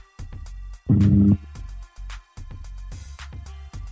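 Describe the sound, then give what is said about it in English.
Choppy electronic interference on a call from another caller's line: stuttering bursts of buzzing and clicking, with one loud, harsh droning blast near the start, and no clear speech. “And I was able to watch and sorry, like we're getting some sort of interference from somebody.”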